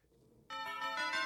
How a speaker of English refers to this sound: Oh, that bell gave me a little tingle. Yeah. Got my spine.